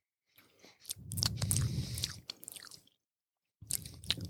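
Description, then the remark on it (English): Wet, crackly chewing of a coconut grape, with sharp crunchy bites and squishy mouth sounds over about three seconds, a brief pause, then more crackling chews. No talking. “Your brain likes the crackles that happen in our mouth.”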